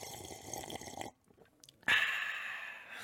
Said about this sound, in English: Anyway, I'm taking a dramatic sip. Should I really slurp it, like, just for the audio listeners, and just so they know?